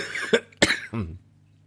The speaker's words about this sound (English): Oh, that's a corona cough. No, I'm okay. I'm not coughing, actually.